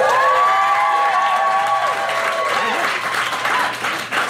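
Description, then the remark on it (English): An audience in Squamish breaks into loud, sustained applause, with shrill whoops and cheers rising above the dense clapping for several seconds. “But how many of you have driven up from Vancouver? A round of applause.”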